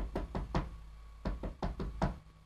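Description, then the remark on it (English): Knocking on the door of an inn as it gets dark: three sharp raps, a short pause, then four more, fairly loud, with a low steady hum underneath and no voices. “So, it's getting dark, so I don't know if he's open, so I'll just knock on the door.”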